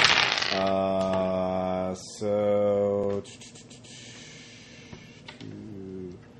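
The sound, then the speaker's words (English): Dice rolled for a called shot in a game clatter and skitter across a hard surface in a quick burst of sharp clicks, with a ringing, tonal hum sounding before and after the roll. The clatter is moderately loud. “So I'll use those 2 dice for the called shot. Yeah. So I just need to roll a 10 or 2 9s or 2 8s.”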